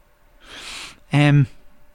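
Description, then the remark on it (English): A dog snoring in a room with the fire on: a drawn-out, breathy rasp followed by a short, louder voiced snort with a low, buzzing tone, then quiet. “The fire's on and I can hear the dog snoring.”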